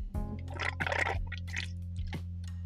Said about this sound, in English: Yeah. Let me take a little beer drink.